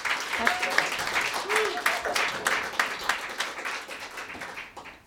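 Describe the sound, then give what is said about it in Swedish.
An audience applauds a performer who plays vinyl records, steadily for about five seconds, a dense, even patter of many clapping hands that tapers slightly at the end, with a few brief vocal whoops mixed in. “En applåd för”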